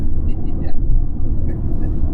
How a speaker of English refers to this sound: So, by the way, that pumping of the brakes there was brought to you by Callahan Brake Pads.